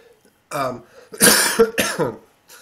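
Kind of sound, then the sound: human body sound, cough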